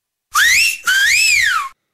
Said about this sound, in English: He gets the wolf whistle. That's right.